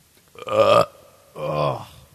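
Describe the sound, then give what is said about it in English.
Two loud, drawn-out burps into a microphone as a mic test, the first harsher and rumbling, the second lower and throaty, separated by a brief pause. “All right, burping in stereo.”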